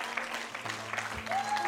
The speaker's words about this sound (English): Come on down if you're a daddy down here. We're going to pray for you. Ladies, if you see them coming up to the altar, just applaud them.